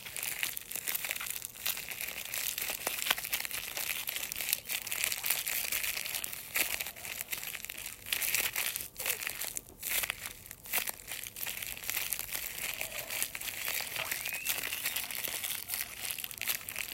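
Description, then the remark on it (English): Bubble wrap being crackled and crinkled continuously, a dense, steady stream of bright crisp rustling and crunching with scattered sharper snaps rather than distinct pops, and no voices. “But it's like bubble wrap. Yeah, that stuff. And it's not like poppy, but it's like crackling it.”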